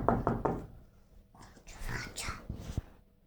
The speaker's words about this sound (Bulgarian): Но големият лош вълк почти веднага потропал на вратата.